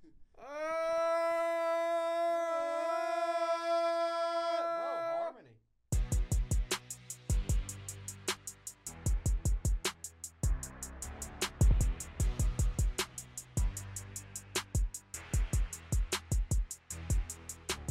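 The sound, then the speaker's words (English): As a mock test of the tornado siren, a voice imitates the siren with a loud, sustained, high wailing tone that holds steady for about five seconds and then cuts off. Loud rhythmic music with punchy beats follows. “I would like to give you a test of the tornado siren.”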